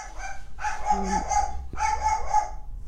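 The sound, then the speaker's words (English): A dog lets out two drawn-out, strained barks in quick succession, loud, with a brief gap between them and no talking. “Dude, that dog just absolutely destroyed him.”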